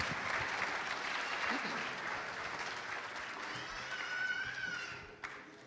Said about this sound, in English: So, a very good deal, a round of applause. Thanks.